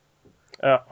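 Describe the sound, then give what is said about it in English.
A short, loud, strained yowl like an angry cat, lasting under a second after a soft click, most likely a person imitating a fighting cat with their voice. “Cat fight.”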